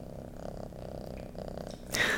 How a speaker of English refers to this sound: Oh, can you hear the purrs? I hope you can hear the purrs.